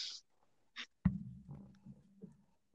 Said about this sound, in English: Hey, man, guess what? I don't think it's the ink pen. I'm using another ink pen, and for some reason, it's this goddamn piece of paper I'm writing on. I don't understand it.